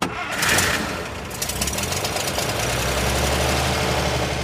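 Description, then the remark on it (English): A car engine turns over with a brief noisy burst, then settles into a steady, low, throbbing rumble as the car crosses a border past three mounted generals; it runs fairly loud throughout, with no voices. “And as the car crosses the border, the three mounted Hungarian generals on the horses sat at attention on their horses and saluted the two generals, that is the two rebbes, that were in the back of the car.”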